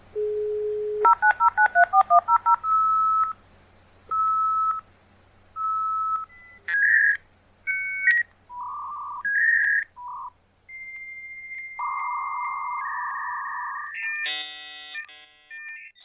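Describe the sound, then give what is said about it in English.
A dial-up modem connecting: a short dial tone and rapid touch-tone dialing, then a string of beeps and warbling handshake tones that end in a harsh, buzzing burst of data noise. Loud, no voices. “We brought like a dial-up connection that some kids would never remember the noise of that, or so if someone ever had to use the phone.”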